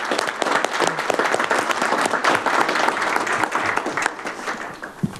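A crowd at a town council meeting breaks into sustained applause, dense overlapping claps at a steady loud level for about five seconds before thinning slightly at the end.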